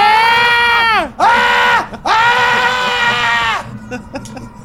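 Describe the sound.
A voice imitates horrified shrieking in three loud, strained wails with short gaps between them, the pitch sagging at the end of each, then trailing off into a few faint sounds.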